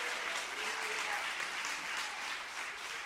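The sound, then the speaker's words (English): A church audience claps their hands at the preacher's request during a sermon, in a steady, dense burst of applause that holds at an even, fairly loud level for about three seconds with no break. “Would you clap your hands if you believe what I'm preaching?”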